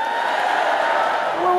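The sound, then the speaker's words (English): A loud, steady crowd roar of MAGA fans cheering at a Trump rally fills the whole short stretch, a dense wash of many voices with no single words standing out. “But now that Trump says he's won, all of a sudden they're cheering.”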